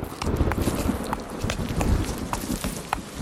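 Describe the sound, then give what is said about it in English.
Dense, steady pattering like heavy rain, made as a foley effect by dropping dry ice onto dry beans in a home studio in Missouri City: many small crackling impacts run together without pause, fairly loud, with no voices. “I made that by dropping dry ice onto dry beans.”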